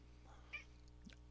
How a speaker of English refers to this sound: Oh, my kitty cat's in here meowing at me. I apologize if he annoys you guys, but this is just part of the podcast now, so you're going to have to deal with it.